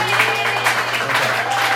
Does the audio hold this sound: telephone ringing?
no